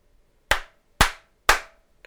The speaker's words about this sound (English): Do you need to clap again?